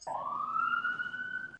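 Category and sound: vehicle, ambulance siren passing outside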